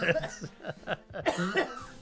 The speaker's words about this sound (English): Yeah, if you got a cough, lean away from the mic. Sorry about that.